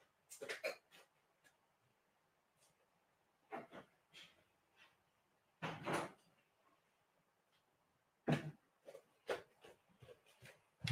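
A door being opened to let someone in, with a series of short clattering knocks and scrapes spread over several seconds, moderately loud, with quiet gaps between and no talking.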